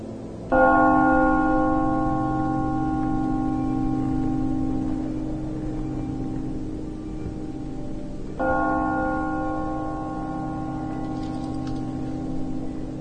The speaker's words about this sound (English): desperate to find a way to open the gate and perhaps escape from this icy cold, this freezing death, he once again picks up his hammer, drags it to the bell, and strikes it again.